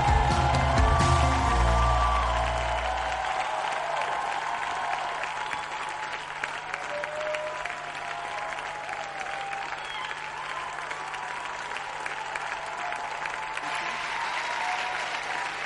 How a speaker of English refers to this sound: Can you make that hand clap bigger for the King of Kings, the Lord of Lords, the chain breaker, the deliverer, Jesus, the King of Kings.